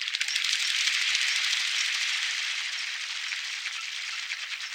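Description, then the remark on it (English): Coots trying to take flight in a long running takeoff beat their wings and slap their lobed toes against the water's surface in a dense, continuous rush of rapid splashy slaps, steady and fairly loud throughout, with no voices. “There are some now, trying to take flight, flapping their wings and slapping their lobed toes against the surface of the water.”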